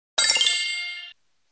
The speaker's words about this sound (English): let me get my bell here. So if you get it right, I'll ring the bell.